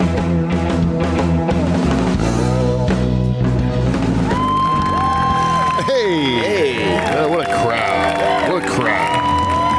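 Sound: audience cheering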